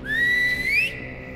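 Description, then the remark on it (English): A single sustained whistle from a person, rising slowly in pitch and ending with an upward sweep before cutting off, clear against a low background hum; the whistle is a signal calling a group to deliver a bomb. “I whistle for a group of Aswang to deliver one of the bombs to me.”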